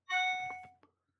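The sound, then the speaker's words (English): A short, bright electronic chime rings out once, like a phone ringtone, with clear sustained tones that fade after under a second. It is fairly loud, with no talking over it. “Can you turn your phone off, please? It's very disrespectful. Let me see who's calling me.”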